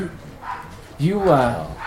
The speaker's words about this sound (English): Those aren't your dogs. Yeah, those aren't your dogs. Those aren't Matt's. They want attention.